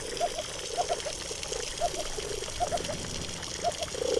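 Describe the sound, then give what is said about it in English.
Underwater fish croaking and whooping as they communicate with each other: short, low tonal pulses come in small irregular bursts over a steady watery hiss, with a louder cluster at the end. No one speaks. “you've then got fish communicating with each other, and they'll be making a range of popping and croaking and chirping sounds”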